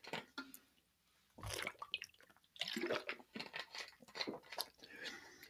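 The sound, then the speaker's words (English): Quiet sounds of someone drinking water: a few wet sips and swallows with small liquid clicks and mouth noises, separated by brief pauses, with no talking. “Excuse me for one moment while I get a drink of water.”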